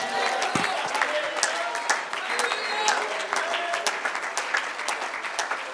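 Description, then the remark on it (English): A large audience at a sermon claps steadily and enthusiastically for several seconds, a dense wash of overlapping handclaps with voices shouting and calling out underneath. “Oh, if you love it, you ought to clap your hands and shout right now.”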